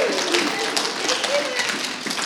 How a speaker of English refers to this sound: So welcome him with a big round of applause. Yeah.